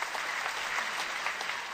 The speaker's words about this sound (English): Really great Let me give him a roaring round of applause. Raymond Cruz.